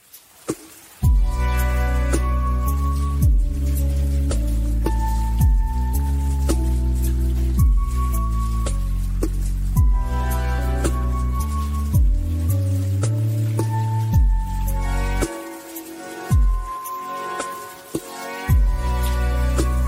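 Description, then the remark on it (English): A mellow lo-fi beat plays steadily, with warm sustained chords, a stepping bassline and soft, watery dripping plinks scattered over a regular percussive pulse, briefly thinning out near the end. “Lo-fi beats to study and relax to. More like lo-fi beats to drown to.”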